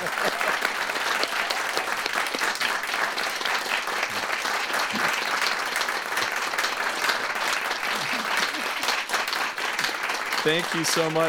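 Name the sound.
studio audience applause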